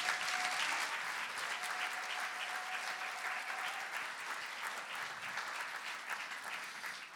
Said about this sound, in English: Thanks, guys. Let's give them a round of applause, can we?